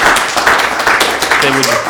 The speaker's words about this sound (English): Big round of applause. Thank goodness.